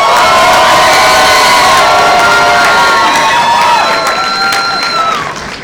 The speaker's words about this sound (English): If it is Wonder Woman, applaud now.